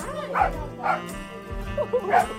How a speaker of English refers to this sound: we make a beeline to the small trailer office behind the very small restaurant, and here we are greeted by two barking dachshunds